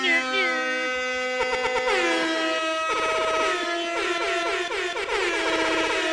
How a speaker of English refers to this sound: I got the hip hop air horns. I have several samplings. You can choose the one you think fits best.